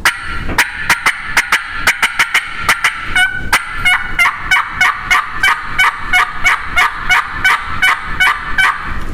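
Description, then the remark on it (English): A rapid, excited series of raspy turkey hen yelps made on a mouth call, using the whole top reed for rasp and calling to a gobbler, with loud sharp notes and excited cutting repeating in a fast steady rhythm and no talking. “What I told that gobbler right then, by doing that, the more excited cutting and the yelping, putting that excited hen yelp to him, that's telling that gobbler that I got excited when I heard him.”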